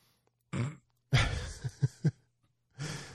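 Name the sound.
sneeze into elbow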